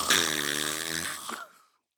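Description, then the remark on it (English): A person imitates a snore with their voice: one drawn-out, buzzy, nasal rumble lasting over a second, fairly loud, ending in a short breathy release before silence. “And now they just snore like this.”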